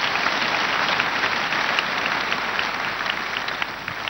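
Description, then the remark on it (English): An audience at the Synagogue Church of All Nations claps for the Lord Jesus Christ in the morning, a dense, steady wash of many hands applauding at an even loudness for the full few seconds, with no voices standing out. “Let's clap for the Lord Jesus Christ.”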